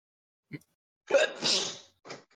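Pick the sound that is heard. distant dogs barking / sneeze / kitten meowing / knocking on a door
sneeze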